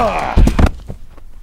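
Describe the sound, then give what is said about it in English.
A door being broken down by two people takes two heavy, loud, booming thuds in quick succession, right after a brief strained vocal sound, then a quieter scuffle fades out. “We're going to break the door down.”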